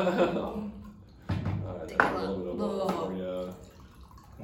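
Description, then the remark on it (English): Water pours into a glass as a chaser after tasting cold brew coffee samples, with a trickling, splashing sound and a faint rising ring as it fills, while voices murmur in the background. “give you some water to chase down these coffee samples.”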